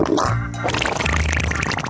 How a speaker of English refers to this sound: Fart Facts. Iguanas. They don't say a lot, but the more fibre they eat, the wetter their fart sound.